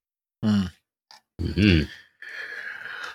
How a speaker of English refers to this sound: Oh, excuse me. All of a sudden I can't stop yawning.